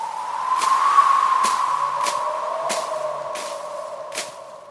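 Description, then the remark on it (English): A tumbleweed sound effect: a steady, airy whistling wind tone that bends slightly in pitch, with soft rustling bursts recurring about every second, played alone with no talking. “Luckily, I've got the tumbleweed sound on tap.”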